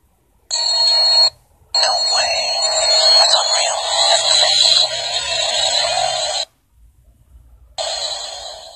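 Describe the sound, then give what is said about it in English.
An electronic alarm blares in loud, high-pitched bursts: a short blast, a long sustained stretch, then after a pause it starts up again, with warbling tones layered over a steady shrill pitch. “Can you come make this alarm go off again?”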